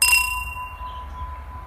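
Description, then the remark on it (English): A single bright clink of whiskey glasses touching in a toast, followed by a clear ringing tone that slowly fades over a low background rumble, with no voices. “Cheers, motherfucker. Cheers.”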